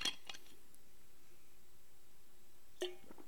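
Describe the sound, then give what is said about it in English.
A glass of water being picked up: a couple of soft, bright clinks at the start, a long quiet stretch with a faint hum, then another brief clink and clatter. No one speaks. “So excuse me, let me grab a little bit of water.”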